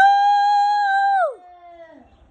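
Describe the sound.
A person imitates a cow's moo for a charity fundraising moo event, with one long, loud, steady tone that slides downward in pitch at the end and trails off into a quieter, fading tail.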